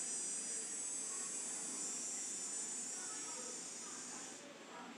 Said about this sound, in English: That shit was annoying. I was like, man. Oh, the cicada?